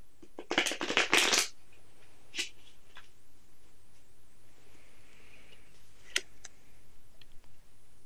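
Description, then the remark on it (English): A flower essence oracle card deck is shuffled in a quick burst of crisp riffling near the start before a card is drawn, followed by a few soft isolated card taps and flicks, with no one speaking. “So we're going to shuffle, and then we're going to draw a card.”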